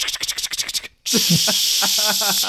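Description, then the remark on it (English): A person talks, then after a brief silence a loud, steady aerosol spray hiss bursts on and keeps going as paint is sprayed into a big paper bag, with voices continuing underneath it. “Every scene they would come in, one guy would like roll out a big paper bag and just start spraying paint into it.”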